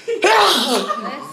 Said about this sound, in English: Bless you. Thank you.